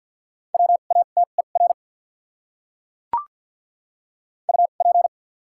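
Morse code beeps sent at 50 words per minute with double character spacing, on a steady mid-pitched tone, quick short and long pulses in two bursts separated by a pause, with a single sharp click in the gap. No voices.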